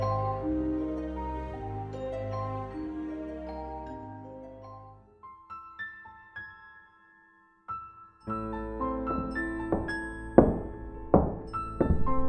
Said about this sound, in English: When she saw me staring at her, my mouth hanging open, she smiled and raised a delicate hand to knock on the wall.